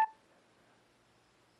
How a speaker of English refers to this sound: And now, after you hear that beep, we are recording.